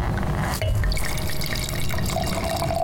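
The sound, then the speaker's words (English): A steady stream of wine pours into a glass, splashing and gurgling continuously for a few seconds with a faint rising tone as the glass fills. Nobody speaks. “Why don't you pour while I”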